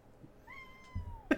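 A cat lets out a single drawn-out meow, moderately quiet, ending with a soft bump or shuffle; no one speaks.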